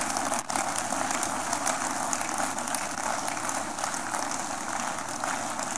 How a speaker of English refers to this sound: Church, keep clapping. They are coming. They are coming.